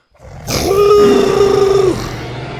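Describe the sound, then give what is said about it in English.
A single loud roar from Buck, a Tyrannosaurus, down below: a deep bellowing cry held steady for over a second with a rough, tonal edge, then trailing off into a low rumbling growl. No one speaks. “As they were nearing the end, they heard Buck suddenly roar down below.”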